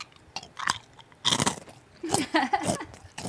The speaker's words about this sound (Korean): 제가 그러면은 요거 마이크 게인을 좀 높여놓고 제가 한번 씹어보겠습니다.